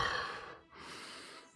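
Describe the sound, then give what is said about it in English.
A person imitates a demon's heavy, monstrous breathing: two long, raspy, airy breaths, an inhale and an exhale, with a brief pause between them and no words. “You hear the demon breathing heavy.”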